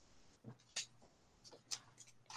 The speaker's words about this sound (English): If you go to the cross reference, hold on, I dropped the paper.